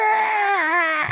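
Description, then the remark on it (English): A person imitates Tom Cruise's horrible scream from the trailer for The Mummy: a single loud, strained, wailing cry lasting about a second, high-pitched with a wavering pitch that sags toward the end, resembling a crying infant. “Like, and it was kind of darker, and it's Tom Cruise, and he has a horrible scream in the trailer, which I think you might have listened to before.”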